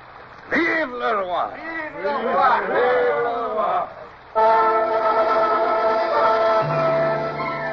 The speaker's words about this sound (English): And now, one last cheer for the king.